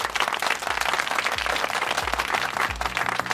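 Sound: audience applause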